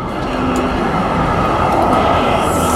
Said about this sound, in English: Sorry, the bus.